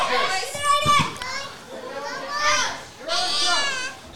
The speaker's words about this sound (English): Certainly an easy way to work into your Saturday morning with a little bit of the juniors and the crowd here getting involved, supporting both sides.